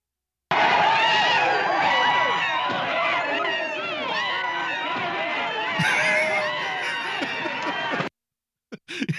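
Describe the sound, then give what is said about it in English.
A dense, chaotic din of many people screaming and shouting at once, loud and continuous for several seconds, with sharp clattering knocks like chairs being thrown scattered through it, then an abrupt cutoff. “A lot of screaming and throwing of chairs, ladies and gentlemen.”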